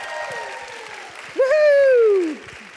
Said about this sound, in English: Yes, let's have some applause. Yes. We're live.